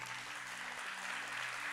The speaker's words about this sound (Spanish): ¿Cuántos acá sirven dentro de esta iglesia en algún área, en el voluntariado? Un aplauso a todos nuestros voluntarios.